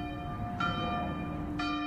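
A church bell rings with two strikes about a second apart, each leaving a sustained, shimmering tone that overlaps the next. It is clear and fairly loud, with no talking.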